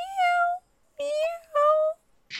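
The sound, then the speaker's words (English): Three thin, high-pitched meows from Calvin, a small male cat, fairly loud, each about half a second long with short pauses between, then a brief soft rustle at the end. “And he has, like, the smallest meow.”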